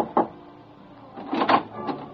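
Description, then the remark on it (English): Knuckles knock on the door marked 4, the upstairs private room at Moretti, in a few dull, uneven raps: a single tap, a pause, a quick cluster of two or three, then one last softer knock. “Your mood right now is for a little private chatter, and you rub your knuckles against the door marked 4.”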